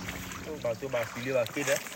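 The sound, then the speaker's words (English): A boat travels along the immense, mud-brown Sanga River, a steady wash of water and motor noise running throughout, with indistinct voices talking over it. “I've been back on the immense mud-brown Sanga River for about 5 hours now, give or take a few stops for local officials to check our documents.”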